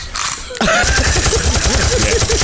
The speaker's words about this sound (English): Because in Philly, they get down with the fireworks. We actually got fireworks sounds here for you.